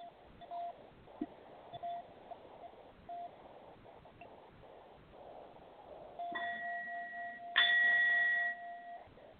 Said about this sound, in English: We're going to be connecting with a brass bowl, letting there be movement through your body to unblock any type of interference in your space.